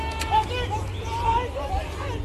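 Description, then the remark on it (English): A murmuring crowd of striking mine workers at Marikana, North West Province, South Africa, in August 2012, with a chant in the distance rising and falling, shouted instructions breaking through, all over a steady low hum of police vans that runs throughout. “A chant in the distance, the hum of police vans, and the yelling of instructions.”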